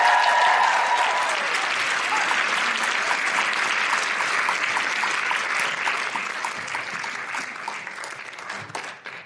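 A crowd applauds steadily, a dense wash of clapping that stays loud for several seconds before thinning and fading toward the end, with a few brief whistles early on.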